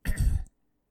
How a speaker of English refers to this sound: I coughed a lot. Because I swallowed this beer too quickly. I don't know if you can hear it in my voice. But I... You know when you cough a liquid up... And like you start coughing it, and it started to come back